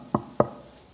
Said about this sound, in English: He began to pray. As he was praying, there was a knock on the door.